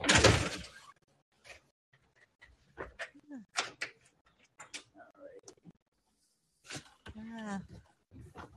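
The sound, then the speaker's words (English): A door opens with a short, loud sliding rush, followed by scattered clicks and soft thumps while indistinct voices murmur in the background. “Let's go check on the doorknob that you have to open first.”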